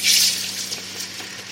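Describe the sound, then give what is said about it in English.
A loud, sharp hiss and sizzle bursts out as leftover molten aluminium, after a casting is poured into a mould, is dumped into a bucket of water, then fades into softer bubbling and gurgling over about a second. “And the rest gets dumped unceremoniously into a bucket of water.”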